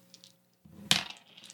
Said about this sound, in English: A is going to roll five dice.